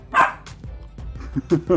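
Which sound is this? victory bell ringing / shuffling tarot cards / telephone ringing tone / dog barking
dog barking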